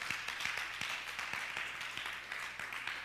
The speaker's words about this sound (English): I got about 10 claps. That's good.